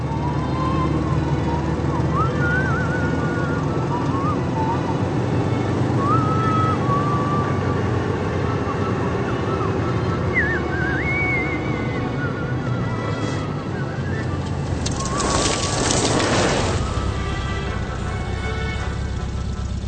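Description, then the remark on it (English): A car engine rumbles steadily throughout as the vehicle arrives at a place in the country, with faint bird-like whistles above it and a brief rush of noise near the end. “Surely it's obvious to everyone that they're hearing a car and that someone's arriving at some place in the country.”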